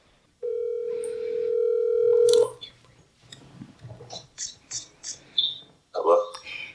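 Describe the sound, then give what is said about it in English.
A phone line rings on an outgoing call to a friend: one steady, moderately loud electronic tone lasting about two seconds, followed by faint clicks and quiet talking. “We getting ready to call him.”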